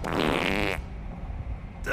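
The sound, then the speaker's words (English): A single loud, buzzy fart from a Batman movie scene in which Harley farts in the Batmobile blasts for under a second, then cuts off into a low, quiet rumble before a brief burst of noise at the very end. “There's also a great scene that really does deserve to go in the Batman Hall of Fame, where Harley farts in the Batmobile.”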